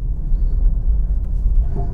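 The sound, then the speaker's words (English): Steady low road rumble from inside a car driving on a highway in near-freezing weather, a continuous engine-and-tire drone that stays loud and even throughout, with no voices over it. “So I'm going to play that just as soon as I get set up on the highway here.”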